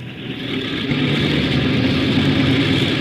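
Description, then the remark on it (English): An airplane engine spins up and settles into a steady, loud droning hum with a rising level at the start, as the port and starboard engines are started one by one during a takeoff check, with no voices over it. “Port engine 2. Starboard engine 1.”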